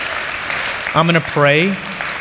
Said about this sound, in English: So could we do this? Could we give her a round of applause for being brave, sharing her story?